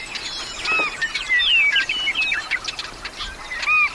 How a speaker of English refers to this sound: With a camera around my neck, I passed this meadow by a dozen times. I was oblivious to this whirling world of willets, swallows, snipes, and wrens.